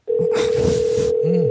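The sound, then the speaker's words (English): A steady, unbroken telephone dial tone hums on a regular, non-Wi-Fi phone line during a live radio call for the whole clip, a single low-mid pitch with a burst of hiss and faint murmuring underneath. “He's got a dial.”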